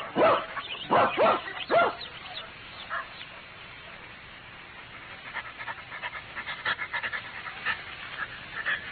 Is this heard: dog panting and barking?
yes